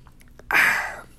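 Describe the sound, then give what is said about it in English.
A quick drink: a few faint clicks, then a sudden breathy, hissing rush of air, like a slurp or satisfied exhale, swelling loud and fading over half a second. No talking. “Now, excuse me, folks, gotta take a drink.”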